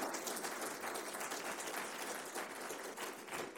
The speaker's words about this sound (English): Studio audience, can we have a round of applause for our excellent speakers?